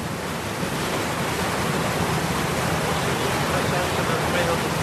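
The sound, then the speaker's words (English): A passenger boat carrying people and cyclists on a shortcut to Uachtarard via Inchigill pulls out from the river onto open lake water, heard as a loud, steady rush of water and wind that stays continuous and even for the whole stretch. “The boat pulls out onto the river and then out onto the open lake.”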